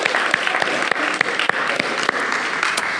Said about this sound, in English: Why don't we give Shay a round of applause for his first time hosting for us.